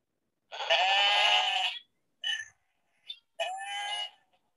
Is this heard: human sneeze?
no